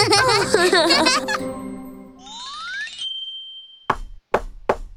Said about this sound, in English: As soon as Spotty Dinosaur and Peppy Hedgehog arrived at the cake shop, they heard a sudden knock at the door. Oh, Mimi Crocodile arrived.